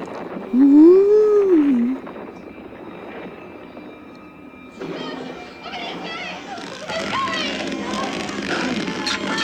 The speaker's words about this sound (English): Listen to these whale calls. You hear them?